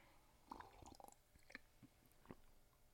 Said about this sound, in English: Let me take a sip of this coffee that I'm not snobbing over. Hold on.